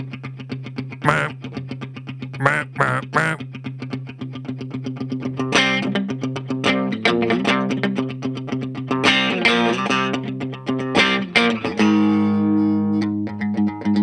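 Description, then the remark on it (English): A distorted solid-body electric guitar with a thick, humbucker-style tone plays a steady low chugging note punctuated by sharp, staccato chord stabs and short riffs, loud and alone without voices. “Sounds like a solid body humbuckery kind of thinger.”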